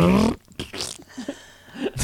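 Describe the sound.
A voice imitates a cheap, buzzy fart sound effect, like those on dollar CDs, from a film scene behind Rachel Weisz's head, with a few short sputtering bursts, fairly loud, ending in a brief breathy blast.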